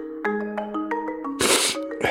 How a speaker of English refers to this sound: No, that sniff was on the record. I was making a point. What point? That I have a sniffle and a cough.